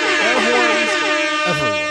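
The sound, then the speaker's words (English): A loud, blaring air horn sounds continuously for about two seconds, its harsh, brassy tone wavering slightly with overlapping horn blasts layered together. “Air horns everywhere.”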